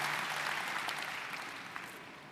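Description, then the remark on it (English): An audience applauds together as a clap offering to give glory to God, in a steady, dense wash of clapping that holds for a couple of seconds and tapers slightly toward the end, with no voices on top. “We may not have the strength of Caleb, but we have the strength to give glory to God through a clap offering.”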